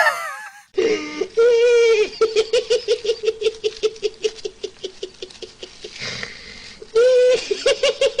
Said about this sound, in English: He's screaming.